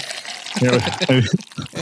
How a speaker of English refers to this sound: It will affect the coffee pour, though.